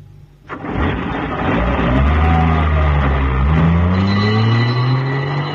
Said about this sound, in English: Oh, thank heavens, here's the ambulance.